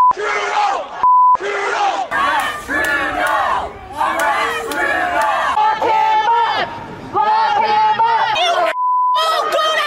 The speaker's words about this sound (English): Anti-vaccine protesters yelling and swearing.